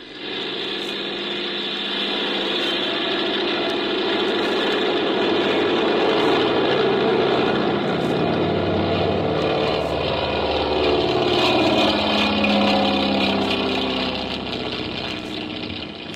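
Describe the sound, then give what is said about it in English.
A small airplane's engine drones loudly and steadily as the plane takes off, a continuous rumbling roar that holds for the whole stretch with slight swells in intensity and no voices. “Well, I guess we can take off. Here we go.”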